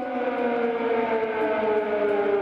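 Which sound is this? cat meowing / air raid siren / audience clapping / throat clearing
air raid siren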